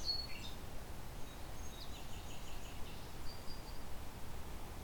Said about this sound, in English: a woodpecker of some kind here.